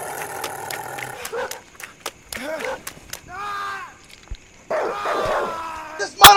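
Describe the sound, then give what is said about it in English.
A dog barks and yips in short, sharp bursts amid a noisy scuffle, with other voices and thumps mixed in. “why don't you let go of the dog?”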